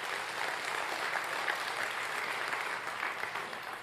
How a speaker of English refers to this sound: Can you put your hands together one more time as you're seated?